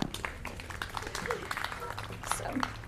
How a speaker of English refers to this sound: Round of applause.